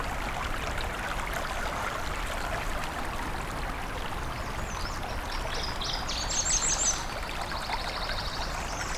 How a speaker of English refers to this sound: Sure is one loud red or northern water thrush, though. There's no way I can see it because it's in a section that was just full of white cedar, jack pine, and tamarack, and a little bit of white pine.